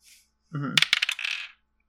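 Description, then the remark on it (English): A player rolls dice on a table during a game: a quick burst of sharp clattering clicks, then a short ringing rattle as they settle. Fairly loud, with no talking over it. “Alright, I'm going to roll mine.”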